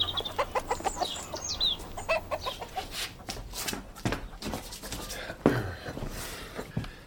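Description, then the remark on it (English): Several chickens cluck in quick, irregular bursts, some calls rising into higher squawks, with scuffling and rustling noises filling the later moments. “I'll feed the chickens.”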